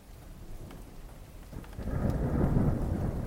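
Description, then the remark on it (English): Steady rain hisses throughout, then a deep rumble of thunder swells in around the midpoint and rolls on loudly to the end, with no voices. “It's raining now.”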